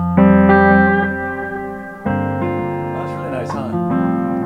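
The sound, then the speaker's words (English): An electric guitar plays a few sustained chords through only a Keeley Halo delay and reverb pedal, bypassing the rest of the pedal board. Each strum blooms into a long, shimmering tail that overlaps the next, fairly loud. “It's the Halo pedal from Keeley.”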